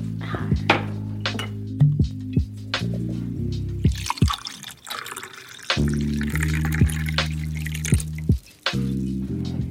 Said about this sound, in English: Let's pour a little bit of wine.